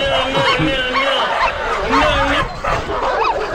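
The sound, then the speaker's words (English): Several dogs bark, yip and snarl in a frantic, continuous tangle as they attack a man, loud, with growling and whimpering mixed into the chaotic attack noise. “Did you interrupt dogs?”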